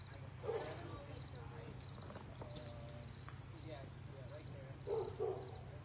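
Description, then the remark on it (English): Many dogs bark, two short clusters of barks near the start and end, over a steady low rumbling hum with faint background voices. “A lot of dogs barking around here.”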